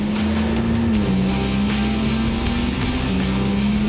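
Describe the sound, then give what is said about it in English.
A turbocharged road car engine drones loudly and steadily, its pitch climbing gradually as it accelerates, with a rushing, whooshing layer from the turbos kicking in riding over the rumble. “You hear the turbos kicking in.”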